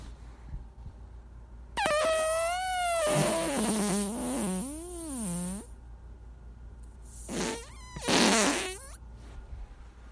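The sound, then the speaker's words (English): A long, loud, drawn-out fart with a warbling, shifting pitch, followed after a brief pause by a second, shorter burst. No one talks. “Oh yeah, we need to close out with that because that's a good little toot.”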